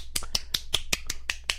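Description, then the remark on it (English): A run of crisp finger snaps, roughly nine in quick, slightly uneven succession, offered like applause. Each is a sharp, bright click with no voices in between. “So that means you heard my applause.”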